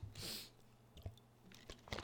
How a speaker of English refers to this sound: So let's get into it. Let me sip some agua.